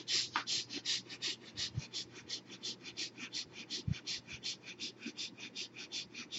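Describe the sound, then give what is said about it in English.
Rapid, rhythmic short breaths, about three or four per second, puffing in and out steadily for several seconds with no talking, as a person does a breathing exercise of quick, short breaths, not very fast. “And start breathing quick and short breath. Not very fast.”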